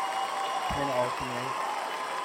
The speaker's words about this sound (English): Let's see if the clapping works. Let's do a cheer. Let's do it. There we go.